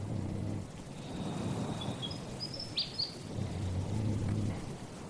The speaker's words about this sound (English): That's a willy wagtail, not a night parrot. They're not a nocturnal bird, but sometimes they just seem to sing to the moon, which is pretty cool.